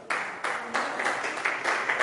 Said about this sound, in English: Now, I like your clapping